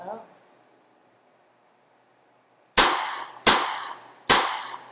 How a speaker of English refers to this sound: How to recognize gunfire, sound of gunshots. Let's see. This is a Smith & Wesson.